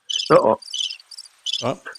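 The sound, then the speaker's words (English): A cricket chirping sound effect: crickets chirp in quick, pulsing bursts that repeat steadily across a couple of seconds, with a few brief lower tones mixed in and no talking. “Oh, I am in charge of not the crickets, mate. Not the crickets.”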